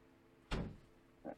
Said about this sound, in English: I hear the door. Here comes Chris.